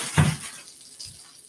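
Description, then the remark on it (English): Four brioche burger buns sizzle as they toast, a steady crackling hiss starting with a soft thud and followed by a second faint bump about a second later. “Hear that sizzle. Food ASMR. Putting those buns in. Let these toast up.”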